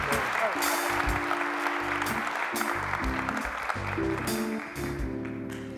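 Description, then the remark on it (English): A church audience applauds steadily for several seconds to thank people on behalf of the church, a dense wash of clapping mixed with cheers and scattered voices, with a sustained musical tone humming underneath before it begins to taper off. “So on behalf of the church, you guys give them an awesome, awesome round of applause.”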